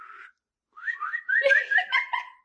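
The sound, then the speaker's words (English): A person whistles: a short steady note, a brief pause, then a wavering, warbling run of quick rising and falling pitches, fairly loud with no talking. “And I would sit there, and when she whistles, I'd just pretend someone would whistle for me.”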